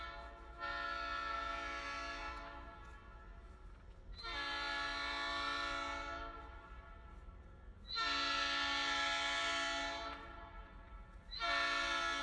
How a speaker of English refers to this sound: So, of course, trains are ingrained to life in Memphis. I wanted to distinguish between this, which is literally a train just a few feet away from me